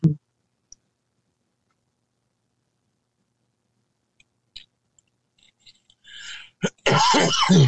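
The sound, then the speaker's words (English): After a long near-silent stretch with faint clicks, a person clears their throat a couple of times, then breaks into a loud, harsh cough at the end. “I'm really having a coughing problem here.”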